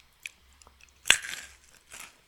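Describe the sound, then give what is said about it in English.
A single sharp bite into Goldfish crackers, followed by a brief burst of crisp crunching that fades into a few softer chews. Faint clicks come just before, and there is no talking. “Is it Goldfish? Yes.”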